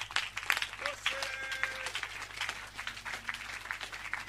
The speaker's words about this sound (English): Clap your hands if you are clapping.